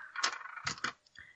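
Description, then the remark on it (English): Dice rattle and clatter across a hard tabletop in a few quick bursts of knocking, then settle with one last small tap, rolled during a game. “I don't know what I'm rolling, but I got a zero baseline, so.”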